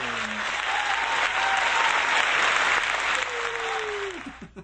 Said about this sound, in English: We could add in like an applause track. I'm sure we can find like a crowd cheering somewhere.